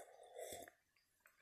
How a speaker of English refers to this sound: But let me have a sip of this.